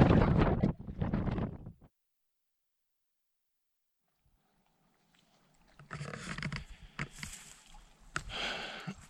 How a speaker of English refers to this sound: I'm getting hammered at the moment, just got my back to the wind. I should be thankful that it's not raining, but the waves of clouds and rain are moving through pretty quickly, so who knows how long that'll last.